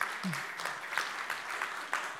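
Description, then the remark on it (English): An audience at a service applauds steadily for a couple's 24th wedding anniversary, a dense crackle of many hands clapping with no break, holding a fairly even moderate loudness throughout. “Thank you, but honestly, you should applaud for her, not me, okay?”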